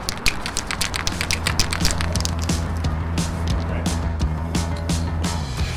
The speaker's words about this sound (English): That guy shaking the spray paint can is Rage 5, a Montreal graffiti artist.